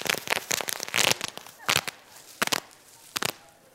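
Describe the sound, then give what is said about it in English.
Sharp, irregular pops of bubble wrap being squeezed, a quick cluster of snaps at first, then single loud pops spaced out with brief quiet gaps between them. “I mean, there is something powerful about just sitting there and popping these bubbles, making yourself feel good, just popping them, popping them, popping them, popping them.”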